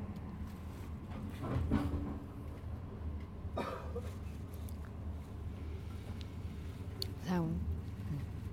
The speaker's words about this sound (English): Good morning, everybody, from the train. It is currently 5 to 6 in the morning, and I did not sleep well. I don't know if you can hear, if I've managed to capture the sounds of the train in the background so well